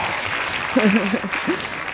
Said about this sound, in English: Hand claps.